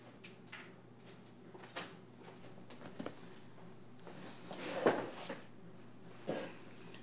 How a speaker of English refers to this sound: I am going to just close that door.